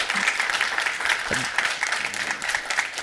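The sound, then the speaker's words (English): An audience at Hagerstown Church claps in a steady, dense round of applause welcoming a new member upon her baptism, a continuous crackling wash of many hands that holds at an even loudness throughout, with a faint voice briefly audible underneath. “Let's do another round of applause.”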